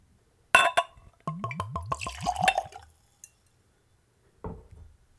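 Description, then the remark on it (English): Glass clink, then bourbon glugging neat from a bottle into a clean Glencairn glass in a quick run of rising gurgles, ending with another soft clink as the bottle sets down. No talking. “As with all spirits on this podcast, I am using a clean Glencairn glass for the tasting. I'm also tasting it neat, which is room temperature, right out of the bottle, no dilution, no ice.”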